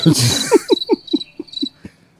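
Crickets chirp in a quick, steady series of about eight pulses, with a thin high-pitched trill running above them, fairly loud with no voices present.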